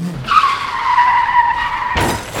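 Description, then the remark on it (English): A bus's tires give a loud, sustained screech of skidding that holds for nearly two seconds, then cuts into an abrupt, harsh burst like an impact as the bus hits a man. No one speaks. “Oh, that bus killed him.”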